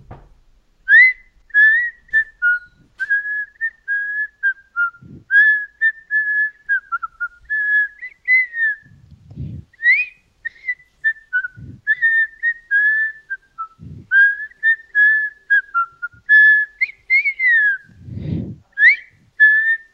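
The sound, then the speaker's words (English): A person whistles a slow, soulful melody for about twenty seconds, the clear tone wavering and sliding between notes, with a few soft low thumps underneath and no talking. “I just killed it on the whistle.”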